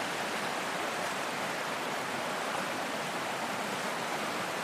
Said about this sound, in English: This river is so beautiful. And obviously it's in spate at the moment because of all the rain we've had, but it's still clear.